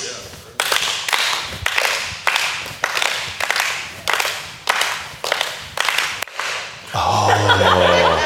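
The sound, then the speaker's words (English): Loud, sharp hand claps repeat in a steady rhythm, roughly a dozen in a row, with a crowd murmuring and chuckling underneath before the clapping gives way to noisier voices at the end. “Who's got the loud clap over here?”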